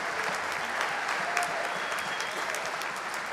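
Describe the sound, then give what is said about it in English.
An audience at a film festival screening in a theater claps steadily for the film's sponsors and partners, a dense, continuous wash of hand claps at an even loudness throughout, with no talking over it. “So big round of applause for sponsors and partners.”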